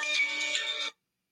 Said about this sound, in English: Oh, I'm getting a phone call. Oh, it's my mom.